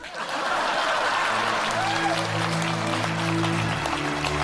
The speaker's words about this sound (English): Please clap.